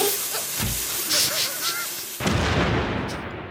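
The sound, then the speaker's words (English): A heavy cannon loaded with a bin and lit with a lighter fires with one sudden, loud burst, then a rushing, hissing roar that slowly fades. Before the shot there is a noisy, rustling background with a few faint whistling tones. “I'll just put this bin in the cannon.”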